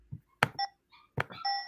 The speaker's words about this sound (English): Oops. I'll use my bell. Mine sounds better.